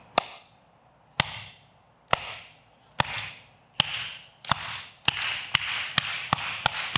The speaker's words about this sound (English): And doesn't a good slow clap just really make you happy? Is that just me?